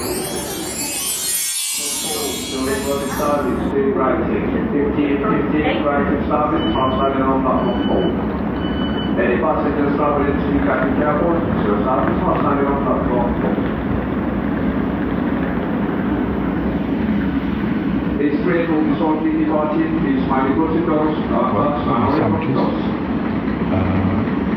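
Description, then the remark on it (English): Busy train station ambience with trains passing: a steady rumble of rail noise with indistinct voices and announcements in the background, and a faint beeping tone partway through. “My train comes in 3 minutes.”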